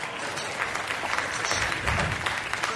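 A large crowd claps and cheers in a dense, continuous wash of noise, loud and steady for the whole few seconds without any distinct voice standing out.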